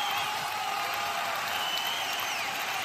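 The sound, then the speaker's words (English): A live audience at a live show of The God Whisperers applauds steadily throughout, a dense, even wash of many hands clapping with faint cheers and whistles mixed in, holding at a constant loud level with no pause. “What a crowd.”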